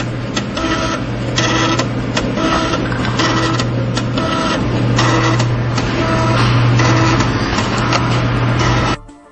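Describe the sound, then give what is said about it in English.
A floppy disk drive whirs and clatters as a disk is pulled in and pushed back out, a steady mechanical hum layered with rapid clicks for several seconds before stopping abruptly. “That's a floppy disk getting like sucked into the machine and spit back out.”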